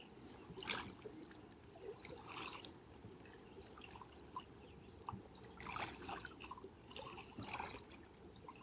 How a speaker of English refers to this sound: Listening to the song of the water and rocks, the song of movement.